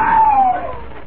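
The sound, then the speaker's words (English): A man lets out a single loud scream from a room off the balcony at the rear of a busy cafe; it slides slightly downward in pitch and trails off after about half a second, over a faint murmur of background noise. “Every hour, the noise increased, but suddenly, from one of the rooms that opened off the balcony at the rear of the cafe, a man's scream rang out above the good-natured bedlam.”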